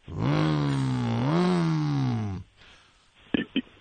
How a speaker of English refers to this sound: So you hear the motorcycle.